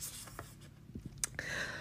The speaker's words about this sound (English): But I just love these cards. So let me go ahead and let's get these shuffled. Let's see what we get for today.